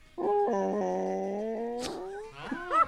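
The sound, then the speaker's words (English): A voice imitates a dinosaur roar: a long, sustained, buzzy growling tone with a slight wobble, then a breathy burst and a few shorter, warbling vocal growls. “And here's my dinosaur impression.”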